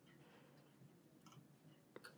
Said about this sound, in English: But I am going to find that out super quickly right now because I'm so fast at scrolling on my keyboard.